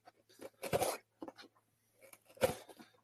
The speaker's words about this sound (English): So we're going to grab our Arsenal Battle Braid scissors to pop the tape on this.